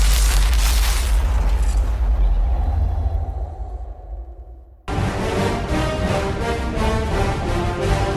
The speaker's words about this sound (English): You might hear thunder in the background. That's because they have something in Florida that we do not have in California, rain. And they get a lot of it.